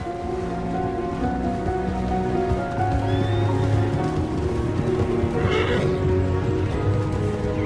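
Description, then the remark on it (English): A horse neighs and whinnies amid a steady, dense wash of background noise like rain or running hooves, with a bright burst of sound partway through. “And for millennia, they ran free and wild throughout the world.”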